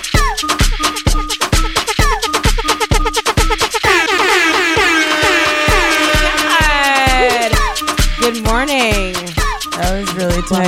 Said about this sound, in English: Play my feelings out on the air horn.